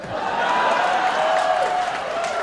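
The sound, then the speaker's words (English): Steady audience applause after the movie title Kate and Leopold is announced: a dense wash of many hands clapping at an even, loud level for the whole stretch, with a faint sustained tone running underneath. “Every movie she says gets applause, so it's like it's the most amazing idea anyone's ever had, ever.”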